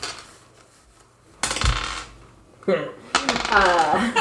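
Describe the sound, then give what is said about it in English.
Green fish dice, hard little objects, clatter and tumble across a tabletop in a few quick bursts as they are rolled for perception checks, fairly loud, with a faint voice briefly underneath near the end. “As you're getting ready, will you guys make perception checks? I suppose. What dice should I use?”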